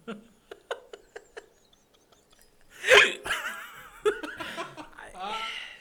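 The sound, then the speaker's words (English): Around six short, sharp hiccups pop out in quick, uneven succession, moderately loud, followed by a louder burst of laughter and voiced sounds. “I cannot stop these hiccups. I cannot stop them.”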